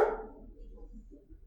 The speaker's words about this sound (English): Misty's barking at butterfly farts again, so. Stupid dog.